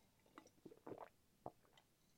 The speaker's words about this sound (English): I've just had a quick drink. Getting my water intake in, making sure I'm nice and hydrated.